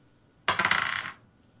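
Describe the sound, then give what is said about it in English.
Dice rolled for an attack on a wolf in a tabletop game clatter across a hard surface in a sudden burst of rapid, bright ticks that tumble and fade over about half a second, followed by quiet. “I'm going to try not to roll a 3, though.”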